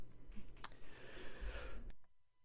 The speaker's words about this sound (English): Sorry, I had to sneeze.